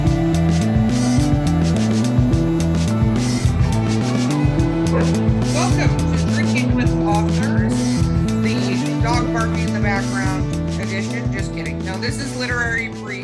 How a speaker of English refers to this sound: Dog is going nuts.